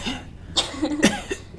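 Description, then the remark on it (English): A person mimics a cough: three short, raspy, throaty bursts in quick succession, the middle one the strongest, with no speech around them. “What kind of cough was it? Was it like...”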